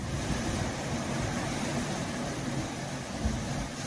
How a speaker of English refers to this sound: It was a beautiful place for those young men training at Camp Tarawa, with the crashing surf and incredible coastline just a couple of miles away for some of them.